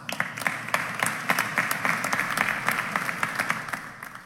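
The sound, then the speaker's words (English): A crowd applauds steadily for about four seconds, many hands clapping in a dense, crackling wash with sharper individual claps poking through; no one speaks. “I don't know who was clapping”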